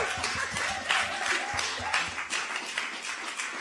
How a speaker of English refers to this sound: Can we have a round of applause for women organising? Come on, women activists.